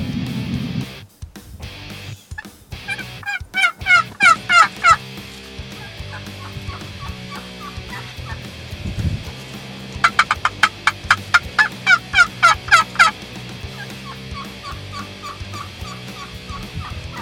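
A wild turkey gobbles loudly and close by in two rapid, rattling bursts separated by a quieter pause, with steady outdoor background noise throughout and no talking.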